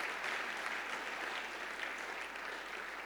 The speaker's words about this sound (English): Come on, church. Won't you applaud the people?